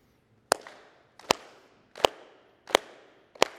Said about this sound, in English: Is that all you got? Can you clap louder?